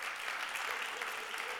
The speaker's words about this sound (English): So how about a panelist encouragement round of applause as we begin? Thank you.